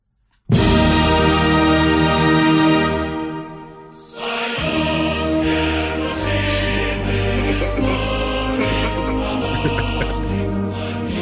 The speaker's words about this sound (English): Well, if we don't figure it out, we're gonna be hearing this song a lot.